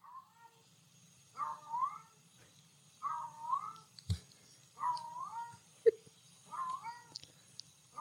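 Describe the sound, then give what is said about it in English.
A cat meows repeatedly outside the window in the middle of the night, four drawn-out, wavering cries spaced a second or two apart, moderately loud over a quiet background with a faint low hum and a brief knock. “The cat was out there the whole time. And Dan actually has audio of the cat.”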